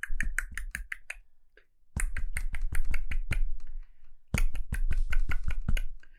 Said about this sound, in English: And the woodpecker was just pecking away at this oak tree, and pieces of bark and wood were just falling down to the ground.